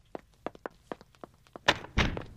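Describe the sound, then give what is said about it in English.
A string of light, quick knocks and taps leads into a heavy door thudding shut, followed by a second solid bump as it settles. No one speaks. “Sorry, it took me so long to get to the door.”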